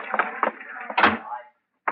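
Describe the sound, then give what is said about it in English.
An office door swings shut with a single low, muffled thud about halfway through, surrounded by murmuring voices, then brief silence before a short sound at the end. “Door? Yes, sir.”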